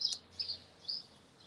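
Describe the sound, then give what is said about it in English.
Birds sing outdoors at Soap Lake, Washington, in three short, high chirping bursts spaced about half a second apart, fairly clear over a quiet background with no one speaking. “The birds are singing probably louder than I am, and they are happy to be here, just like I'm happy to be here, as always.”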